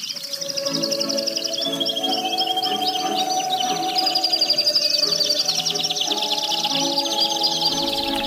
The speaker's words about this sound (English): And we're going to end the program with more bird music. This is the these are actually canaries singing along with the Skater's Waltz performed on the Hammond organ.